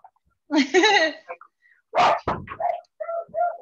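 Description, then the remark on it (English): A dog barks: a drawn-out, wavering whine-like bark followed by a few short, sharp barks spread over several seconds, with some voice-like sounds mixed in. “I'm gonna take this dog out.”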